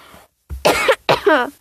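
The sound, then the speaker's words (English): Two quick coughs, one right after the other, muffled into an elbow covering the mouth, with a short throat-clearing quality and no talking. “I can't really demonstrate how to properly cough into your elbow because no one can see me, but I am covering my mouth with my elbow.”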